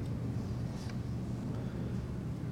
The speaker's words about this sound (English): The jet noises bring us to reality, doesn't it?